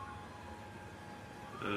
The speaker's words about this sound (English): That siren is really adding to the effect. It is. I don't think there'd be sirens.